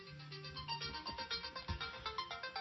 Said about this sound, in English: Sorry about that. We had a phone ringing here. The office.